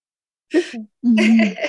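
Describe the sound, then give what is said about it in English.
A yawn: a short breathy intake followed by a longer, drawn-out voiced exhale with a low sustained moan, fairly loud and on its own without speech. “Sorry for yawning.”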